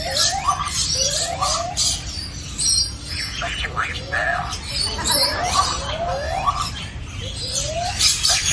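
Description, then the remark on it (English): A lyrebird mimics a zoo evacuation alarm with a steady series of rising, whooping electronic tones, repeated about a dozen times over a hissy, noisy background with scattered chirps. “Within a week of this lion incident, the lyrebird had nailed the fucking alarm.”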